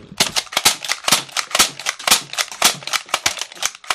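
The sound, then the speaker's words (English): A toy dart gun fires off all its darts in a rapid, uneven burst: about a dozen and a half sharp, snappy pops and clicks over a few seconds, fairly loud, with no voices. “I made it rain. Yeah, but now you just lost every bullet.”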